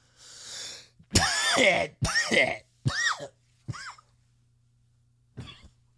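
coughing and throat clearing

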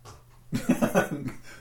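dog barking

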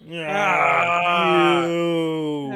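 a person yawning loudly

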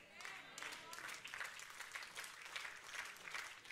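audience clapping

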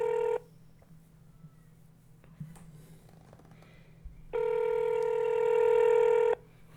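phone call being dialed

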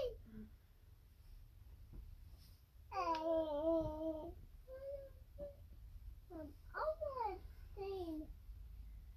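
newborn baby babbling

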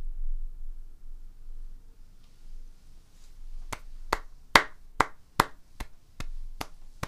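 a few hand claps

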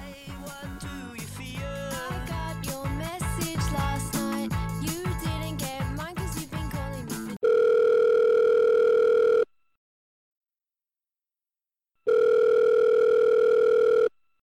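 telephone ringing

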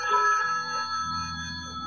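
telephone ringing

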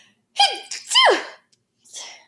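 sneeze

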